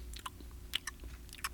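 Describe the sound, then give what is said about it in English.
Someone chews clams from Leechfield with soft, wet smacking and squishing, a handful of brief bursts in an uneven rhythm over a low steady hum, with no talking. “These are pretty good clams for this time of year.”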